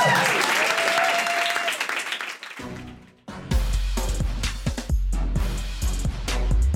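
A crowd claps and cheers loudly for a few seconds, the dense applause briefly thinning before a second burst of clapping resumes over a low rumbling bed of sound.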